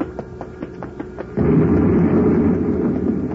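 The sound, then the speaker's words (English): A quiet run of ticking and clicking gives way to a vat in a lab suddenly exploding as pressure builds up, a loud boom that swells into a sustained roaring rumble for the remaining two seconds. “One of the vats blew up.”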